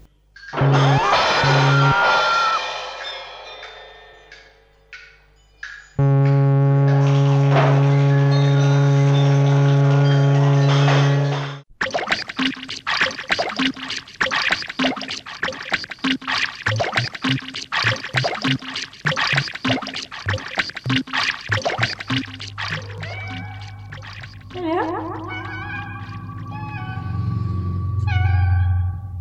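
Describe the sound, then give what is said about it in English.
A radiophonic experimental electronic piece made with metronomes and tape loops: layered sustained tones give way to steady, rapid metronome ticking over repeating tape loops, loud and continuous throughout, with no voices. “metrophones and tape loops. This is a piece composed by Denise McDermott.”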